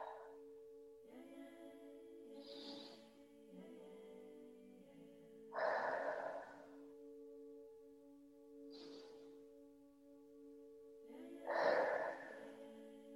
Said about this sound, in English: And if it feels good to you, we're going to start some continual conscious breathing, taking a breath in through the nose and out through the mouth.